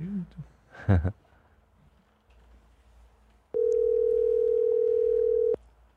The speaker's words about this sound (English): Oh, nobody picks up the phone when you're calling. I mean, it's your number. Oh, that's right. It's my number. Oh, it's because unknown number. Yeah. Shit. That's why people aren't picking up.